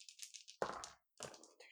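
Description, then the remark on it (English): Three dice rattle in a cupped hand: a light, high clicking shake, then two louder bursts of clattering separated by a short pause, with no talking. “I have 3 dice in my hand for Everly.”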